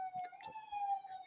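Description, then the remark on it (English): An emergency vehicle siren sounds from a street in Brooklyn, a steady sustained wail holding one pitch, faint, with a few short background noises mixed in. “You just have nonstop sirens for the...”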